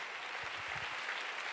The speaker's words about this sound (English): Oh, come on, give God a big hand. Hallelujah. Come on, singers and musicians, come up. Oh, give the Lord a big clap. Hallelujah.